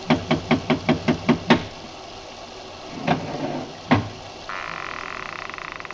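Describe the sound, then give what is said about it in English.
A quick run of eight hard, ringing knocks on a door made with a bronze idol, loud, followed by a pause, two more isolated knocks, then a steady mechanical buzz underneath. “I lifted the bronze idol and rapped on the door with it, and the voices stopped.”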